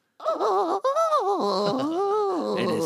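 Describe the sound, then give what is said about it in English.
A person lets out a drawn-out, wavering whimper, the pitch sliding up and down in quavering moans for about three seconds, fairly loud and with no talking. “Your Highness, it has truly made my day to hear your royal whimper.”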